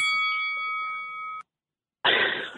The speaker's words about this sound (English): round two, gong.